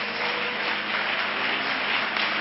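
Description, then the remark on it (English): An audience standing and clapping their hands unto the Lord in a dense, steady wash of applause, the many claps blurring into one continuous crackle at an even loudness throughout, with no voices standing out. “Let's all stand, clap our hands unto the Lord”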